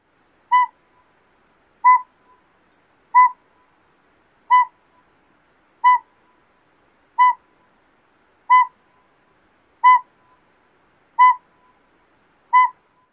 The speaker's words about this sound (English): So let's play those back to back again. First, the northern pygmy owl.